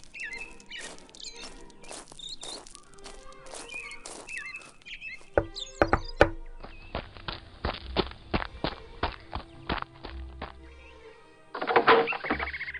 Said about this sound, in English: Hello? Anyone there? Who knocked? It was I!